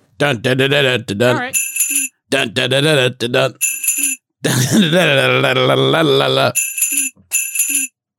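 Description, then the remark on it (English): Several short, bright bell rings sound, each alternating with bursts of voiced vocal sounds, in a quick back-and-forth rhythm. “Yeah, I kind of replaced you guys with bells, and I'm really sorry.”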